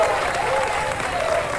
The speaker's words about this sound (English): Huge round of applause for the chef.